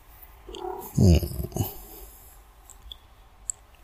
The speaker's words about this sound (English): Yeah, meow, meow. Meow. What a brat. Do you hear him? Meow. He's like, meow.